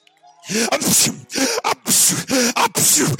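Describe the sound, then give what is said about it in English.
A voice imitates a boy sneezing seven times while retelling the Bible story of Elijah and a dead boy who gets up: a rapid string of loud, breathy bursts in quick succession, each with a short vocal 'ah' before a sharp hissing release. “He sneezes 7 times, praise God, and he stands up.”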